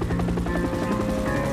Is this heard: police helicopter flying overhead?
yes